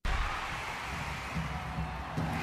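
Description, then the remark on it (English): A crowd cheers in a steady, dense roar of many voices that holds at an even level throughout, with a slight swell near the end. “A crowd cheering? And that would be correct.”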